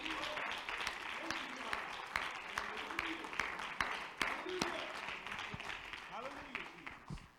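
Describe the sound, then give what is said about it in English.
An audience claps steadily in praise of the Lord, a dense, lively wash of many hands, with voices calling out over the applause. “So I think we ought to give the Lord a hand clap of praise for that today.”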